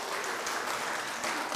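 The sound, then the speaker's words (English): Audience applause: an audience applauds themselves at a morning dedication. A steady, dense wash of many hands clapping at an even, fairly loud level with no pauses and no voices. “So if we could just have a round of applause for ourselves for just that would be awesome.”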